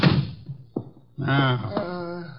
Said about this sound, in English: Will you come in? Shut the door. Okay.